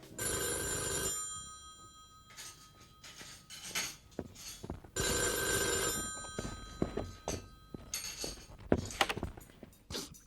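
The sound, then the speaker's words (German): A telephone rings twice with a bright, harmonic bell tone, each ring lasting about a second, separated by a pause filled with soft clattering as the breakfast table is being cleared. “Tim war gerade im Begriff, den Frühstückstisch abzuräumen, da klingelte das Telefon.”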